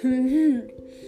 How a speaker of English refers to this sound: I apologize for yawning, but it is like 11:10 p.m. at night